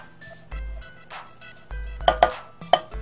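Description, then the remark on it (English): A good sharp knife chops through a whole chocolate bar, starting on the corners, in a few uneven strokes, each cut a sharp crisp crack with a thud on the board, the loudest coming in a quick cluster near the end. “So while I'm showing you how to chop up the chocolate, we're gonna get our cream heated up.”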